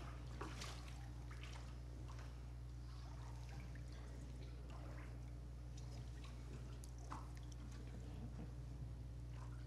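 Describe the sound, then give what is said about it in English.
Water sloshes and splashes in irregular bursts as a person wades into baptismal water for a church baptism, with trickling and dripping over a steady low hum. “if you'll come and join me here in the water.”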